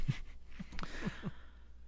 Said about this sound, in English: As I yawn into a microphone.